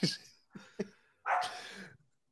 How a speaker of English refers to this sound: Somebody give that dog a mic.